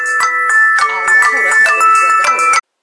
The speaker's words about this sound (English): I have to take the phone when he called.